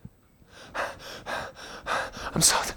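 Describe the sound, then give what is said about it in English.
A man's voice imitates a dog panting: about five quick, breathy huffs in a steady rhythm, fairly loud, ending with a sharper gasp. “You've seen your dog pant outside?”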